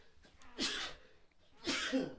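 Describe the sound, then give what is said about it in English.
Two sharp, breathy sneezes about a second apart, each a sudden hissing burst that fades quickly, with quiet background noise between them. “Bless you.”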